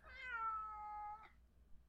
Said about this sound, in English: Oh, by the way, you just heard Gimli. He's my cat. He's presenting his Christmas greeting this year as well.